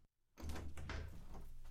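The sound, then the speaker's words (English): A door swings open after a brief silence, with a soft rumble and a rush of outside air and room noise that continues steadily, as someone opens the door to let a visitor in. “Let me get the door.”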